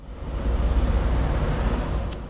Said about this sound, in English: I'm in central London, Clerkenwell to be specific. It's a hot summer's day, there's busy traffic, and I'm standing by a tall building with a heavy metallic door.